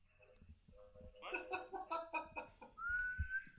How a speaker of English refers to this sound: He got like, steam locomotive. You got toy train sounds is what you got.